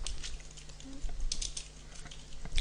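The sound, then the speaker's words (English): A handful of quiet, crisp keystrokes tapped out irregularly on a computer keyboard, pressing Control F to search for a domain, over a faint steady background hum, with no one speaking. “Simply click on Control F, press on your keyboard, and look for the domain that your buyer bought from you.”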